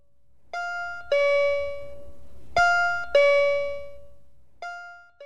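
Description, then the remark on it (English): Bells ring out clearly in three quick two-note pairs, each strike ringing on and slowly fading before the next pair, with no voices present. “We've got to go. I think I hear the bells.”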